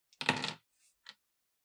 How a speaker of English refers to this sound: I rolled a 5, but my kitten flipped over the 2 and turned it into a 4.